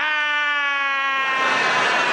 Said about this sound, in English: But the best thing that could happen to you while you were in the subtropical paradise would be that they would start up the wave machine. And the wave machine would be heralded with a siren, and the siren sounded a bit like this.